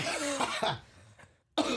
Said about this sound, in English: yeah, remember what I said about coughing?